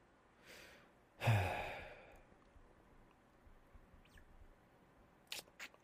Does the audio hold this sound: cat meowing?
no